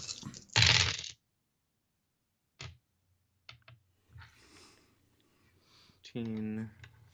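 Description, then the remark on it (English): Dice clatter loudly across a hard table at the start as a player rolls for damage in a game, followed by a few sharp, sparse clicks, then quiet murmuring and a brief voice near the end. “So roll your damage. 4. Roll I still have to find all my dice.”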